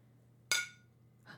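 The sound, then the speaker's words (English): A single bright clink of a glass of water and a cup of coffee tapped together in a cheers toast, ringing briefly before fading, with a softer knock shortly after over a low steady hum. “Well, carefully with your water and my coffee.”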